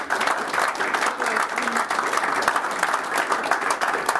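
A crowd gives a big round of applause to thank a man, with dense overlapping claps that stay loud and even throughout, without any single voice standing out.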